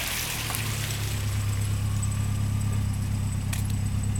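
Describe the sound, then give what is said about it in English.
A car engine idles as a passenger steps out with her bags at a college campus in Connecticut: a steady, low rumbling hum that holds even throughout, moderately loud, with faint light clicks now and then and no voices. “As she stepped out of the car, she grabbed her bags, waved the driver goodbye”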